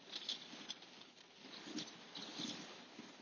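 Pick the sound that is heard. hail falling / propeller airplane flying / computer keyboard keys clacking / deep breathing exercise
hail falling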